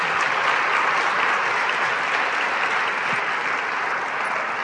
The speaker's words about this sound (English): Will you guys give them another round of applause, please? Thank you, guys.